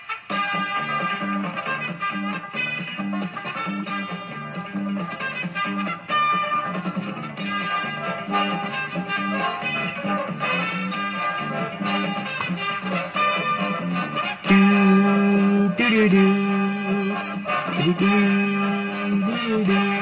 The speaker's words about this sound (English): Actually, you know what? Let's play the Family Feud music to keep people entertained.